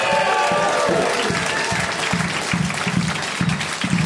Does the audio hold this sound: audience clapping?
yes